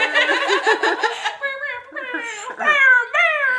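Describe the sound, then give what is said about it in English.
A voice mimics a DJ air horn, starting with a quick run of about five buzzy, stuttering blasts, then trailing into higher, wavering and sliding tones, fairly loud with no other sound. “We've been making fun of ourselves and others by trying to do this foghorn. The air horn.”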